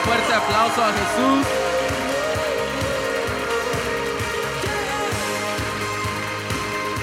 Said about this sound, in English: Why don't we give Jesus a round of applause? How about that?